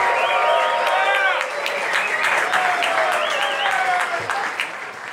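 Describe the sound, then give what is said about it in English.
A crowd claps steadily and loudly for several seconds as Tai Lopez is introduced to speak for the next 20 minutes, with shouts, cheers and a few high whistles rising over the dense patter of hands. “So there's not a whole lot else I can say other than let's put your hands together for the next 20 minutes. Bring it up for Tai Lopez.”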